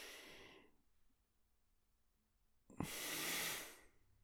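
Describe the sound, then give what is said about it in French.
Slow, deep breathing during a relaxation exercise: a long airy exhale fades out, a quiet pause follows, then a full, breathy inhale swells and tapers off. “respiration, mais on peut vraiment avoir cette sensation de juste être là et juste relaxer comme ça.”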